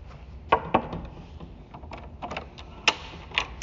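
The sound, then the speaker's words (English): A wooden door opens on the third floor of a government information library: a few sharp knocks and latch clicks spaced irregularly over a low rumbling background, with no voices. “Third floor, Government Information Library, wooden door.”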